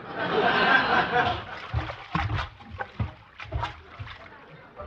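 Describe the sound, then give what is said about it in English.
A burst of loud, wet sloshing of water inside a belly full from drinking 22 glasses of water, while a person rocks in a rocking chair, dies down after about a second, then gives way to short, choppy vocal sounds resembling chuckles. “And to keep my mind off of smoking and eating, I just drank 22 glasses of water.”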